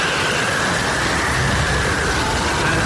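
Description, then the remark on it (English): A steady car engine drone runs throughout, with a faint tone holding above a broad hiss and low rumble. It stays even and continuous, with no voices over it. “Obviously, because I couldn't see anything, I was driving at about 4 miles an hour, so I need an engine sound. Okay, in a car.”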